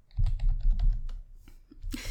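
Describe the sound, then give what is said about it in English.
Rapid typing on a computer keyboard while searching something on Google, a steady clatter of many quick keystrokes with a few brief pauses and a louder burst at the end. “Sorry about the typing.”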